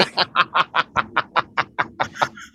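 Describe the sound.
A voice imitates a wrestler's bird call, done after a body slam: a rapid, cackling series of about a dozen evenly spaced squawking pulses. It is loud, with nothing else underneath.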